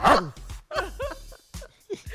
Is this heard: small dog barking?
yes